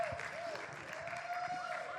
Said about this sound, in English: Well, you have a big cheering section.